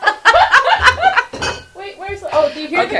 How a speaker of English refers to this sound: Do you hear the clinking wine bottles?